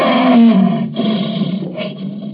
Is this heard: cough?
no